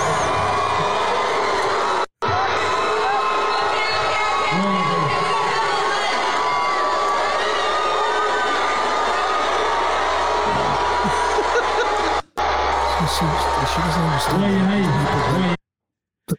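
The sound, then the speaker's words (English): A large crowd shouts and boos at a woman introduced on stage, in a loud, dense, continuous roar of many voices, with two abrupt momentary cutouts before the noise stops near the end. “It's a big crowd, too. It's really loud.”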